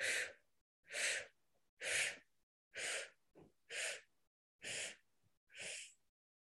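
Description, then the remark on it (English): Seven quick, breathy sipping inhales in a steady rhythm during a breathing exercise, each a short airy rush with faint gaps of quiet between them, no talking. “Last round, 7 sips up.”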